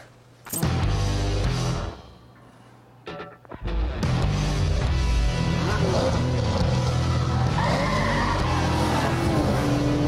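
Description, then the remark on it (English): Loud engines roar as cars race through a city downtown in a video game, tires screeching and skidding repeatedly, with a brief drop in noise before the racing surges back and continues steadily. “Bunch of cars racing through downtown somewhere.”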